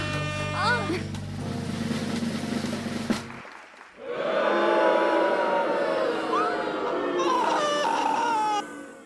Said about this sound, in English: looking at me like my cat just sat on the soundboard.